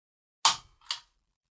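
Two sharp mechanical clacks from a stapler worked with a single finger, the first louder with a brief hiss of air, the second softer about half a second later, with silence around them and no talking.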